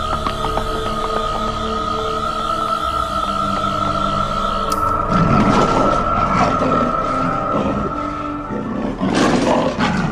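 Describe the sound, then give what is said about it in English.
A sustained, droning hum gives way midway to a loud lion roar, a broad rumbling growl that swells again in a second surge near the end, with no voices. “Because I'm the one that will have to deal with the lion if we don't run fast enough.”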